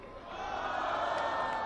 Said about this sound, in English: he asked the crowd whether or not he should respond to Trump. And of course, most people in the crowd said no.